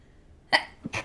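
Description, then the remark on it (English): A sharp sneeze bursts out after a quiet moment, a loud breathy explosion followed by a brief catch and a second gusty burst, with no talking. “Bless you. Thank you.”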